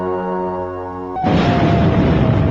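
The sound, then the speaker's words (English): A steady droning tone cuts off abruptly as a loud bomb explosion bursts in at a train station in Bologna, Italy, its harsh, rumbling roar sustaining for over a second without fading. “Footage suddenly changes to people being rescued from a bomb explosion.”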